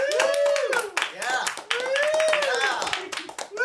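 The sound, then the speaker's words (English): A live studio audience cheers and claps steadily as a vote for Mario Party, with loud rising-and-falling whoops over a dense patter of hand claps, energetic throughout. “we're going to the live studio audience here to let us know, guys, this is the deciding vote. If you're going to woo”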